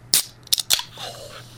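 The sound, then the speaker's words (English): A can of pink grapefruit sparkling water is cracked open at the microphone with a few sharp metallic snaps, followed by a soft, steady fizzing hiss as the carbonation escapes. “So, did you get the crack open?”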